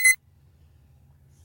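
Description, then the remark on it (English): A timer alarm gives one short, bright electronic beep, loud, then cuts off, leaving only a faint low hum in the background. “And the clock ends on the timer”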